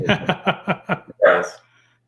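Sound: dog barking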